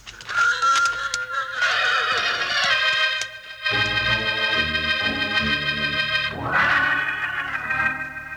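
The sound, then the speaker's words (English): A horse neighs loudly, several long, shrill whinnies running almost continuously, with a few sharp hoof clops scattered near the start. No one speaks. “Yeah, we'll watch for another chance to get these two star makers when their darn horse ain't around.”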